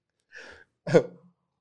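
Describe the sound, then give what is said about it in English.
A quiet slurp of coffee, followed by a short throaty swallow and breathy exhale, two brief sounds less than a second apart with no talking. “Sips coffee. tea break.”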